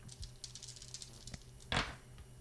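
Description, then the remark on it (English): Dice clatter and tumble across a tabletop in a quick run of small, light clicks, ending in one sharper knock as they settle, rolled for a sneak attack in a tabletop game. Quiet, with no talking. “Fun dice rolls.”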